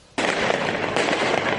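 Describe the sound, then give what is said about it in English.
Fireworks, launched by protesters at riot police and buildings during street protests in France, burst into a sudden, loud barrage of dense crackling and popping that continues without a break, with no voices. “Fireworks turned into weapons as protesters launched them at riot police and buildings across France.”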